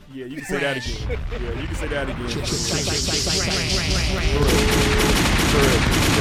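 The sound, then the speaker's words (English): Rapid bursts of gunshot sound effects crackle continuously, loud and dense, layered over a voice talking underneath, with a hissing wash growing brighter toward the end. “Get them some gunshots, man.”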